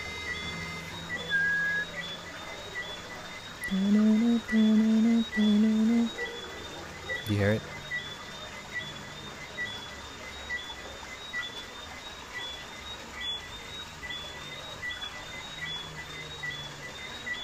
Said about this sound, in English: So here we are on the balcony listening to the crickets, and I'm noticing that there's a strong downbeat on this note.